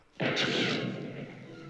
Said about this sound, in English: Yo, that gunshot, that shit, you know what they were doing right there, right? Just take a quick look, watch.